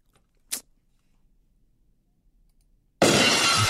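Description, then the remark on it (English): A brief sharp tap, a few seconds of near silence, then a loud crash of shattering glass, a sound effect, that bursts in suddenly and carries on to the end, with no voices. “I don't even think the breaking glass is on here. Damn. It is.”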